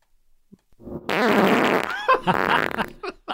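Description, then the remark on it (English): A long, loud, sputtering fart lasting about two seconds, played for a radio show game of guessing whose gas it is, with rapid fluttering pulses and a wavering pitch, breaking into a couple of shorter bursts before trailing off. “All right, so we're playing Guess Who's Gas.”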